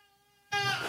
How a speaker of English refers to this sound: Yes, as I have a screaming 5-month-old baby in the background.